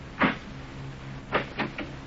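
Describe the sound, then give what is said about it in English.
A door is opened: a muffled clunk, a pause, then a quick run of three latch-like knocks and rattles, with no voices. “Well, I'll tell you if you just open the door, but hurry, Pops.”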